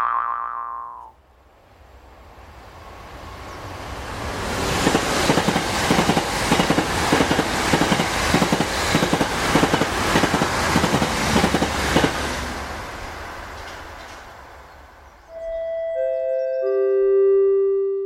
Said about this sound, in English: Network Rail apologises for the lateness of the following announcement. The train now approaching Platform 4 has just left.